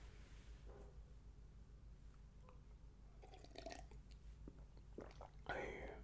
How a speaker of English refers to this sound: Let me pause. Quick sip of water, boss. Don't mind me, boss.